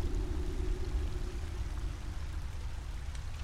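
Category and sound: nature, running water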